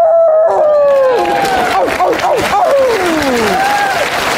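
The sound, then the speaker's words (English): Human voices imitate wolf howls at the 2020 Oscars ceremony, rising and falling in long wavering wails that overlap one another over steady crowd noise and applause, loud throughout. “We give this one to our wolf.”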